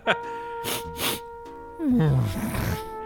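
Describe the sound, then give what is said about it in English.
Someone imitates an animal sniffing at a door and trying to get through, with two quick, breathy sniffs, followed by a low, drawn-out growling vocal sound that slides downward. “That's it, sniffing the door and trying to get through.”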